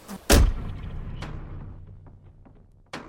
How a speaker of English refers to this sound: I opened the door slowly.